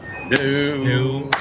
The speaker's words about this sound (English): Hang on a minute. He needs his clap. He's only signed in because he's wanted a clap, I'm sure.